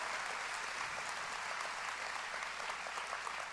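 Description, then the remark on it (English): A church audience at the LaGrange campus applauds steadily during a service broadcast live across two campuses, many hands clapping in a dense, continuous wash of sound that holds at an even, loud level throughout without a break or any voices rising above it. “Right now, if you are watching us live at our LaGrange campus, I want you to give me a big round of applause.”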